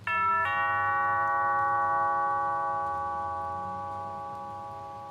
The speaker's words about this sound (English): And there's a doorbell. I will ring it.